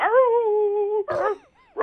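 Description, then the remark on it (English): A dog lets out a long, drawn-out whine, then a short yelping bark and a rising whimper, with brief quiet gaps between the sounds and no talking. “Let's go to Paul's Dog.”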